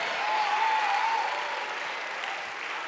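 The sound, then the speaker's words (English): An audience applauds steadily, a dense, even wash of clapping hands that holds at a constant loudness for the whole few seconds, with a faint tonal whistle or voice briefly riding over it early on. “You're hearing the applause of other sinners that just have other sin.”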